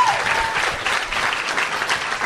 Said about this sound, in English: You may not know her from the podcast because it's her first appearance, but let's have a round of applause for Patti Davis, everybody.